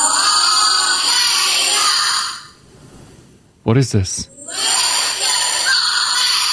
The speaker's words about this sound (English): I have the cub chant. Oh, do you? The grand howl, as it's called.